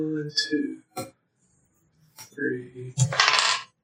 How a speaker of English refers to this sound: take all the fucking dice you got and roll them.